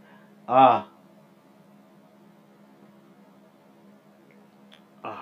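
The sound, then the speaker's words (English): A person drinks sips of water to stay hydrated: a single short, wet gulp rings out early, then a long stretch of low steady hum, with another brief swallowing sound at the very end. “Excuse the sounds, people, but I gotta hydrate.”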